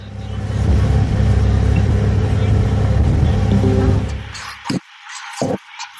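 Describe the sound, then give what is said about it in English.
A loud, steady roar of wind buffeting the microphone mixed with a low engine rumble on top of a moving ferry in New York on a sunny day, just after passing under a bridge, during an earbud test; continuous for about four seconds before cutting out into brief bursts and near silence. “All right, we're on a moving ferry. We just went under the bridge.”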